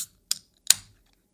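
A beer made with blackberries, Madagascar vanilla beans and homemade pie crust being opened: two quick, sharp metallic clicks about half a second apart, the second followed by a short fizzing hiss. No voices.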